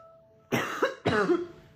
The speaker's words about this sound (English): Jesus, this cough, guys.